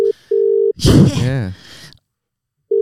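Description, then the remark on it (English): A telephone ringback tone pulses in a steady double-ring pattern while calling someone who does not pick up, pauses while a man speaks loudly and emphatically, urging him to answer his phone, then the tone starts again at the end. “Oh, come on, Mo. Answer your phone, mate.”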